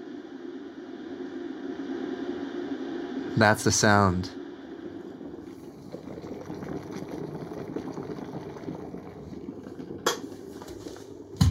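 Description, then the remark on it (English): Water heating to a boil for making cup noodles: a steady bubbling rumble and hiss that builds and thickens, with a brief voice speaking over it partway through. “Let's get our water hot. Okay. Oh my God, listen to it go.”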